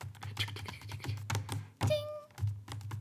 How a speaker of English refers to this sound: Because it's a typewriter.